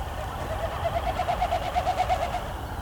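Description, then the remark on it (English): A Wilson's snipe, low and close by, gives a rapid, even series of hollow, hooting pulses that swell slightly in pitch and volume over about two seconds, above a steady low rumble of outdoor noise. “Maybe that was because I had a Wilson snipe really close to me.”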